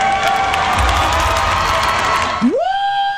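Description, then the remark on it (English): A loud, dense crowd cheers a Miss America contestant blasting Trump for about two and a half seconds, then cuts off abruptly as a rising tone sweeps up and holds a steady pitch. “It was just some Miss America contestant blasting Trump and the crowd cheering.”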